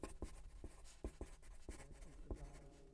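A pen scratches across paper in quick, irregular strokes as someone writes a full name, with soft taps between bursts of writing and no voices.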